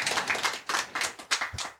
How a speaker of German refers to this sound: Ich kann leider nicht vormachen, dass wir jetzt auch klatschen können, wenn jemand von der Bühne geht, weil ich zwei Mikros in der Hand habe.